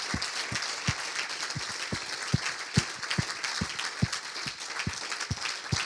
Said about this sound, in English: I just wonder, church, if we could all just stand and clap for the older generation here this morning. We just honor you.